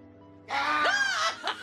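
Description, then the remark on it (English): After a moment of near silence, a woman suddenly lets out a loud, high-pitched scream of fright, wavering in pitch for about a second before trailing into shorter gasping cries. “That was a legitimate scream.”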